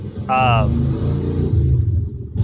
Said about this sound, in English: Wow, that's loud. Motorcycle.